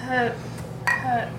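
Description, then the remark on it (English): Glasses clink together twice in a toast raised during a World of Darkness game session, each bright strike leaving a short, high ringing tone, with a murmur of voices underneath. “I don't know if I'm just clinking this.”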